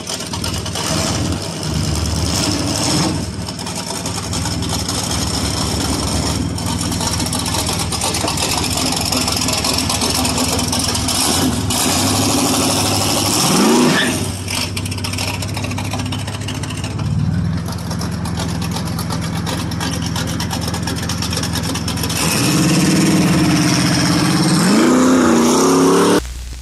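A loud engine of a big, beat-up old muscle car, probably from the 1970s, rumbles at a lumpy idle, then revs up in several rising bursts before settling back down, deep and throaty throughout.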